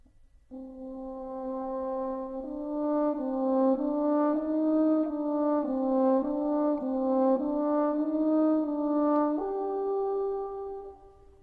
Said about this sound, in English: I'll tell you what, I'll ask the horn to play his theme first, and we'll hear the melody on the top, which is in C major.